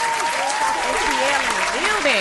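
A steady, dense burst of clapping from a crowd runs loud and unbroken for a couple of seconds, with sliding vocal sounds like cheers or whoops rising and falling underneath.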